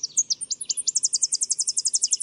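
A Tennessee warbler's high, rapid song: a quick stuttering start building into a fast, even series of bright, ringing chips, clear with no voices.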